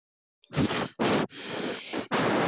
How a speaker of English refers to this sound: Stop breathing in your mic, bro. Huh? Stop breathing in your mic.